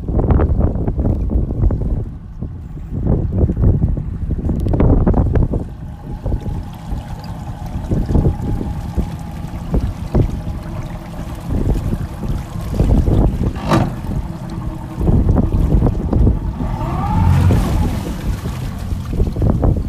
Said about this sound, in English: Boat engine slowly going into the water as we go back into the harbour.